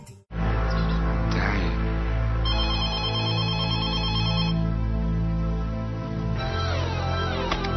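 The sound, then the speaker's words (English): A telephone rings loudly, its trilling electronic tone repeating over a steady, droning musical backdrop, with no voices present; it is Ferris phoning Cameron, looking for a car. “Ferris phones Cameron looking for a car.”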